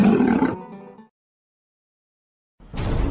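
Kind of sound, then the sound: sound effect, roar sound effect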